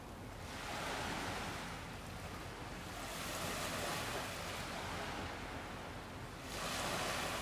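Ocean waves roll in and break on a shore in the Bahamas in steady, broad washes of surf, swelling and receding about every few seconds, full with no voices.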